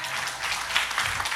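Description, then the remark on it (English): A church audience at Praise Chapel Paramount claps together for the worship team in a steady, dense wash of applause, many hands blending into a continuous crackling roar with no voices standing out. “You know, why don't we give a hand clap to the worship team, amen?”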